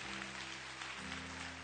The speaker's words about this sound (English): Go ahead and just clap. If you're going to clap, just go ahead and clap right there. So it sounds good on the CD.